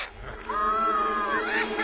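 A shrill, wavering creature cackle rises out of a low rumble, a high, nasal squealing laugh with quivering pitch that holds loudly for over a second: the cackle of Salacious Crumb from Return of the Jedi.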